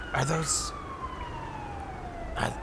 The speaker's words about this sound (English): Are those sirens?